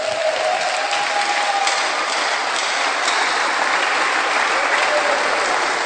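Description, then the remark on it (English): A crowd claps for the Lord steadily for several seconds, a dense, even wash of applause at a constant loud level with no voices over it. “I thought you would clap for the Lord for that.”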